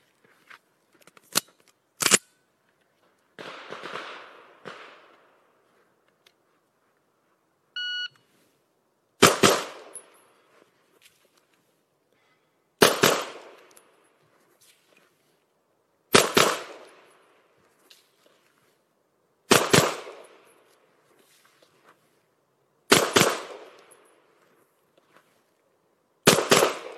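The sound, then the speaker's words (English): A shot timer beeps once, then a string of loud, sharp pistol shots in pairs follows at steady intervals of a few seconds, each crack ringing out with a short echo, in a shooting drill called step back, the timer checking split times. A couple of quick shots come before the beep. “So the timer is just split time checking device in this drill.”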